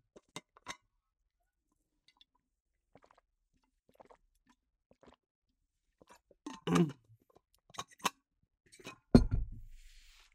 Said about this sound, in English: This is the cereal I'm eating. This isn't an advertisement for it. In fact, I think cereal's bad for you. But not everything that you enjoy is 100% good for you. Lucky Charms.